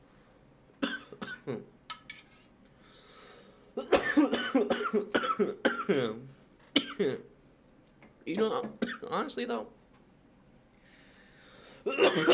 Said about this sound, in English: I've been thinking, as I'm literally in the process of coughing my fucking lung out, I've been thinking about taking like a tea break lately, just because I've had this like cough or something for like a while now